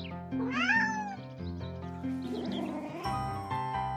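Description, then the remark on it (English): A kitten meows over steady background music, its high, rising-and-falling cries repeating a few times in the first couple of seconds, clear. “A kitten is a very young cat, just as a child is a very young person.”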